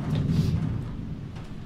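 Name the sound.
heavy rain pouring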